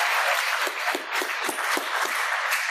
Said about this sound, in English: I think you've done a fantastic job. And just, yeah, give yourself a clap.